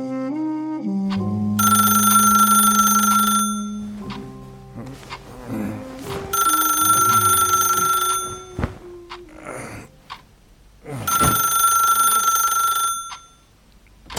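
A telephone bell rings loudly in three long, rattling bursts separated by short pauses, with no one speaking, in the audio drama The Devil You Don't.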